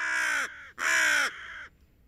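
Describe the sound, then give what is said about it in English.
Two loud, harsh raven caws in quick succession, each a broad raspy call with a slightly falling tail, used as the sound cue for the Raven's Nest breaking news segment, with no voices. “Finally, a little bit of breaking news here, and to do that, yes, we're going to the Raven's Nest.”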